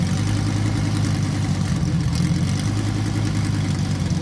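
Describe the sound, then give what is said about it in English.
A Lamborghini Evo 2 race car engine runs in a steady, loud, low rumble with a dense harmonic drone, holding an even pitch throughout with no talking over it. “Cadillac? Lamborghini. Lamborghini? That's that was the V2.”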